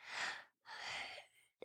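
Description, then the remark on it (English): A child yawns: a short breathy intake, a brief pause, then a longer airy exhale that trails off, with no talking. “Are you yawning over there? Are you so tired already?”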